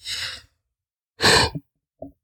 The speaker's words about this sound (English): As evidenced by the fact that I'm yawning.